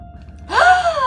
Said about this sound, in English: But what happens is … wakes up with a gasp.